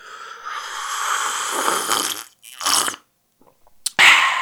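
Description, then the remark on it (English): A voice imitates how a man at work slurped a sip of coffee: a loud, airy slurp drawn out for about two seconds, then a shorter second slurp, a brief silence, and a sharp breathy burst. “So he would slurp it like that and go, good shit.”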